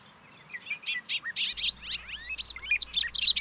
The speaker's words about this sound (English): listen closely right now and you will hear the sound of the bobolink or Robert of Lincoln